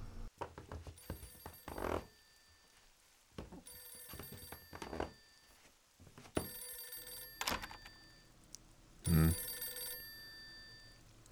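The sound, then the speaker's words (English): An old-style telephone bell rings in a radio station studio in several bright, metallic bursts separated by pauses, clear, with a few soft thumps in between and no talking. “Mike walked back into the studio as the phone rang once more.”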